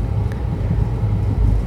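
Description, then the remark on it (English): A steady, deep rumble of an overnight train in motion from Trivandrum in Kerala to Coimbatore in Tamil Nadu, India, at 4 a.m., with a low droning hum and faint rattling texture holding at an even level throughout, no voices. “So I'm on a train which goes from Trivandrum in Kerala to to Coimbatore in Tamil Nadu, and I have to be quiet because it's an overnight train and it's 4 o'clock in the morning and most people are sleeping.”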